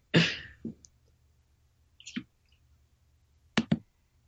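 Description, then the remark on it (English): A handful of sharp keyboard clicks, spaced irregularly with pauses in between, some in quick pairs, moderately loud against a quiet background. “I hear someone typing.”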